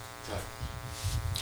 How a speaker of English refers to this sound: I got a crazy buzz coming through Two here. Two different things going on. So we got to kind of cut this off. We got to kind of cut this short here. Sorry, guys, but there's a buzz coming through.